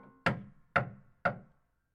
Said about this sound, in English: But instead of going his way, he turned back and took the straight road to the old women's cottage and knocked on the door.